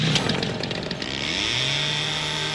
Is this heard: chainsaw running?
yes